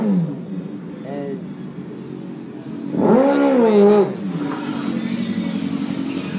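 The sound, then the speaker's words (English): A small import car's engine idles steadily, then someone revs it sharply in one loud rising-and-falling burst before it settles back to a rough, buzzing idle. “Damn rice burner. Yeah, right. He revving it up”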